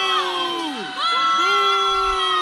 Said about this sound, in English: Here are students booing as he walked across the stage and the student that witnessed the act breaking down what happened.